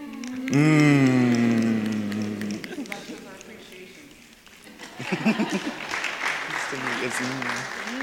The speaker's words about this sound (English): So it's like, everybody, snap your fingers and go.